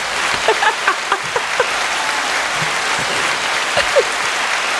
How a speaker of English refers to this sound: I love the applause. Thank you. Welcome.